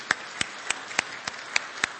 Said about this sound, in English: Let's give them a round of applause right now, if you would, those who serve.